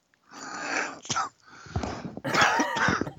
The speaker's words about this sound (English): See, you make me. I'm like coughing now.